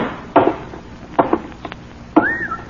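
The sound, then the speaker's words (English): The heavy mechanical inner door of a spaceship grinds open: three loud metallic clunks spaced apart, the last followed by a rising, hissing whine as it slides. Fairly loud, with no voices. “Inner door is still closed. Let's hope it'll open.”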